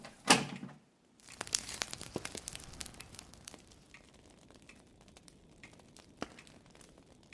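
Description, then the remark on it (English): Crinkly rustling and crumpling of paper as a fire is being started, beginning with a sharp tearing burst, then a steady stretch of crackly handling noises with occasional louder snaps. No one speaks. “I'll start a fire.”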